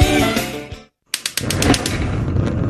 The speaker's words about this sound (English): Hear that? Sugardale Bacon's been making Saturday morning sizzle since 1920. Because Sugardale isn't just some run-of-the-griddle bacon. It's slow-smoked with applewood and hickory to achieve the perfect balance of sweet and savory.